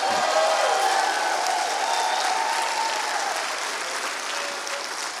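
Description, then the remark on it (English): An audience claps steadily and loudly for several seconds, a dense wash of many hands with no pauses, easing slightly in volume toward the end. “Well, I think they deserve a better applause than that one.”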